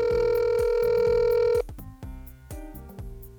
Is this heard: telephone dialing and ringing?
yes